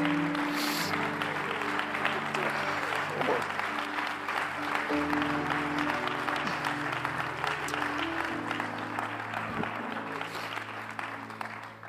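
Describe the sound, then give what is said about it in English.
A church audience claps their hands in praise of Jesus in a dense, steady wash of applause that carries on for the whole stretch, over sustained keyboard chords that shift a couple of times. “Oh, clap your hands right now and praise Him.”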